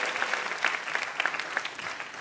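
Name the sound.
audience applause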